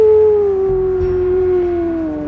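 wolf howling sound effect

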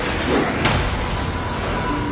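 door being opened

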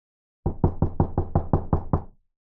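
knocking on a door

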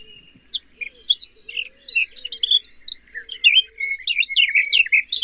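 garden warbler song

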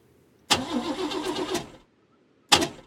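car engine being restarted

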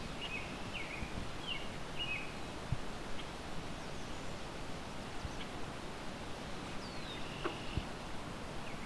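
swamp sparrow song

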